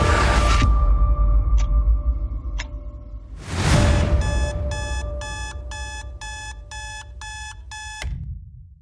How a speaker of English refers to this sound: Wow. Every time I get God bumps when that alarm goes off.